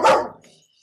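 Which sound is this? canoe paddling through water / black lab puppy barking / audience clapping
black lab puppy barking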